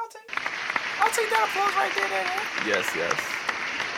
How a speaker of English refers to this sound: I'll take that applause right there.